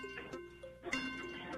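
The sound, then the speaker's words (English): A game show countdown clock ticks through 15 seconds over a sustained, tonal musical bed, with a few sharp clicks standing out at moderate, steady loudness and no one talking. “15 seconds on the clock.”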